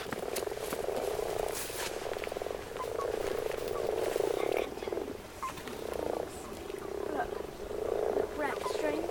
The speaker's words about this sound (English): Okay, well, we're next to Ellison's Pond and we came here on the off chance that we would coincide with a mass spawning event. And you might just be able to hear in the background that we're speaking to a soundtrack of amorous frogs.